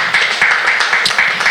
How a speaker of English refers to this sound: Please clap for her. That's a lot of courage to say that.